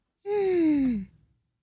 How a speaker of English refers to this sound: Gasp.